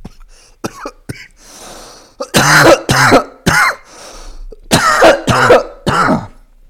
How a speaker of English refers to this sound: Sorry again, coughing in the mic.